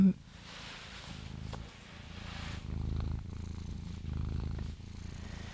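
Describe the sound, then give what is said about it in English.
A pet cat purrs, a steady, rhythmic low rumble that swells and eases with each breath and runs without a break for the whole few seconds. “Can you guys hear the cat in the background?”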